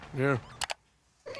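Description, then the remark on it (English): A single drawn-out cat meow from a cat video, fairly loud, followed by two quick sharp clicks and a brief silence before another voiced sound starts. “Let's watch cat videos.”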